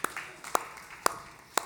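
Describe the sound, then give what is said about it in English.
An audience claps in unison, four sharp, evenly spaced claps about twice a second, fairly quiet, with no talking over them. “Being, come on, somebody wants to clap on that.”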